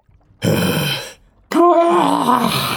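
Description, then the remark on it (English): A heavy, breathy exhale is followed after a short pause by a long, wavering groan of exhaustion, loud, with no other voices or background sound. “And there you all lay, shivering and panting in the dark and the cold.”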